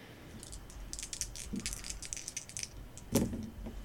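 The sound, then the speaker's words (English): Dice are rolled, rattling and clattering in quick bursts for a couple of seconds, ending with a sharper clack as they land showing two fours. Fairly quiet, with no talking. “Oh my God, okay, so you rolled 2 or more dice, so you get what you want.”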